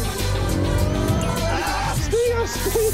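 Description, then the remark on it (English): A supercar engine roars and revs hard as it accelerates, with tyres squealing and skidding in bursts, loud, while a voice talks briefly over the noise. “That isn't sports car fast. That's super car fast.”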